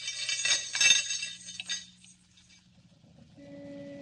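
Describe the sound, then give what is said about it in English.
Bright metallic clinking and jangling of handcuffs, loudest in the first two seconds, then fading as a low steady hum and a rising tonal drone take over. “Handcuffs, eh?”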